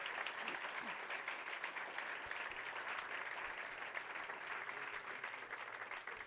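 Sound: audience applauding veterans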